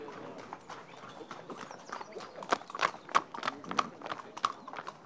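Horse hooves clip-clop in a steady, even rhythm, growing a little louder midway, over a low indistinct murmur of background voices.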